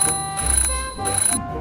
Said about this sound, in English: They give me a job to do every morning, but when I do it, they still tell me off. Who am I? I'm an alarm clock. And yes, it's a thankless job.